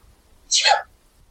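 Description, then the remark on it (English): A single sneeze, a short, sharp burst of breathy noise lasting under half a second, fairly loud against an otherwise quiet background. “Bless you.”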